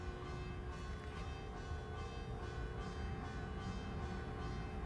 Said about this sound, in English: It's actually over there. The bells are over there. They ding dong on every hour, even through the night. And I'm staying here, which means I can hear them through the night.